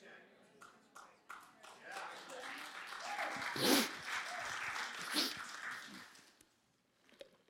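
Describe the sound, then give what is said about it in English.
A few scattered claps swell into sustained audience applause that peaks midway, then tapers off and fades out near the end, with some indistinct voices mixed into the crowd. “Just keep clapping while I take a drink of coffee.”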